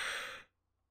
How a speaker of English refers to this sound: Oh, I just yawned. Sorry.